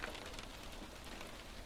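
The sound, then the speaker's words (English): Soft, steady patter of light rain tapping against a window, a continuous fine crackle with no voices. “It's raining lightly and the sound of rain hitting the window”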